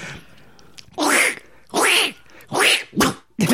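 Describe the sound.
A voice imitates Donald Duck sneezing: five loud, raspy, nasal bursts, the first three spaced evenly and the last two quicker, with quiet pauses in between.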